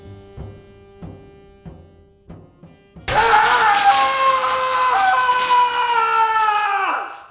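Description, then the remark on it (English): After a few seconds of low, rhythmic thudding, a man lets out a loud, sustained scream that lasts about four seconds, its pitch sliding down as it cuts off. “Yeah, that screaming idiot's me.”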